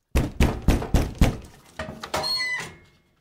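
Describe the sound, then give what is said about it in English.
Five firm, evenly spaced knocks thud on a wooden door, followed by a few softer taps and a brief creaking squeak as the sound trails off; four German soldiers knocking at a house door. “Hermann was roasting in the oven when there came another knock on the door.”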